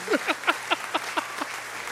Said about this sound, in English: Hand claps. One more time with the hand claps.